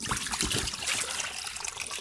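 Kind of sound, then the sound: household object, drinking fountain water running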